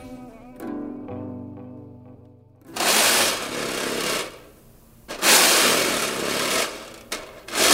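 Harsh, raspy scraping across the underside of a snare drum, done by one person alone in a recording studio, comes in long loud strokes with a shorter scrape between them, following a few seconds of low, sustained humming tones.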